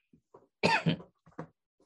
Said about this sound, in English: Might edit that out. I know it's uncut, so I will keep the coughs in.